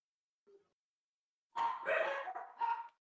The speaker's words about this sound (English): So anyway, what's the dog doing, though?